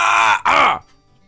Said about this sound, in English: Excuse me, I just needed to feel the need to cough right there. Goodness. Okay. That was violent.